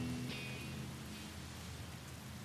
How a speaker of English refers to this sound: But with the rain that thundered down, the rushing river rose. The roadman watched it anxiously as it lapped around his toes.